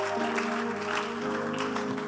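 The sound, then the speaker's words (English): A church audience claps together in a steady, continuous wash of hand claps, with sustained tones humming underneath throughout. “Clap your hands.”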